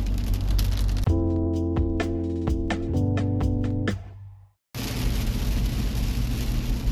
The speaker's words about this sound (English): Ugh. I love the rain, but man, towing in the rain sucks!